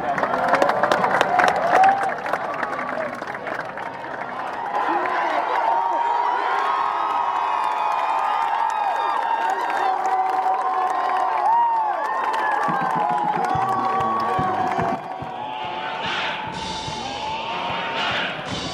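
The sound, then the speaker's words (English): A large stadium crowd at a Columbia football game roars and cheers continuously after an overtime touchdown, a dense wall of shouting and whooping that stays loud throughout, with individual yells poking out of the din as fans run onto the field. “You saw everybody run onto the field. They were celebrating and shouting, and it was like this new state school vibe that you just don't see at a place like Columbia.”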